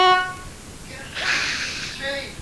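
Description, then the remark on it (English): A short, steady car horn blast opens, followed by a rushing hiss and another brief honk, with muffled voices and traffic clamour underneath, as drivers shout and honk on the Beltway. “Yes, they're shouting at me and honking their horns.”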